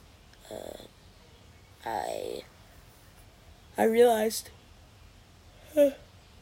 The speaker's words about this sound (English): I realized, sorry for the yawn, I did not have a rod to set, like, to use.